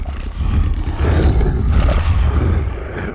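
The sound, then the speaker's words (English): A Granta, a 15-foot-tall boar from the north of Ankara, lets out one deep, rumbling roar that holds loud for about three seconds, grinding and guttural, with no voices around it. “The north of Ankara is dominated by 15-foot-tall boars called Granta, who are feared as much for their raw physical might as their cleverness.”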